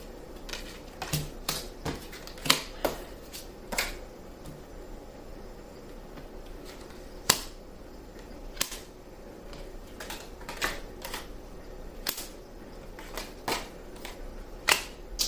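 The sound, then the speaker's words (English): Tarot cards being shuffled and handled: a run of sharp, papery snaps and flicks at irregular intervals, some clustered, over a low steady background hum, with no talking. “May I have some more cards, please?”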